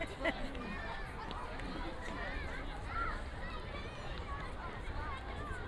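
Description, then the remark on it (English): A steady wash of crowd noise, many overlapping voices chattering at once without any distinct words, with no background music and no ride sounds underneath, just continuous indistinct hubbub throughout. “Nothing I enjoy like long segments of nothing but crowd noise.”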